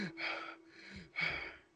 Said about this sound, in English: Yeah, I'm breathing a little heavy myself.